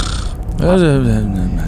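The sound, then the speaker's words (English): A voice imitates the loud snore of Fulton, a character fast asleep halfway through a speech: a single low, gravelly, drawn-out rumble that starts abruptly and slowly sinks in pitch for about a second. “You just hear Fulton snoring. Fulton is fast asleep.”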